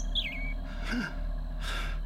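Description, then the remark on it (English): A single short chirp from a bird on a forest floor sweeps downward near the start, followed by two soft breathy rushes of air over a steady low rumble; no one speaks. “A bird on the forest floor.”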